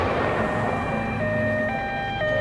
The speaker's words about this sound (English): That September morning in 1972, the people of Munich wake to the sound of sirens and the rumble of military trucks.